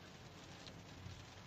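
Steady, dense hiss of heavy rain over a constant low rumble as a car drives along a highway in a downpour, with mist coming off the tires of other cars; no voices, just an even wash of noise throughout.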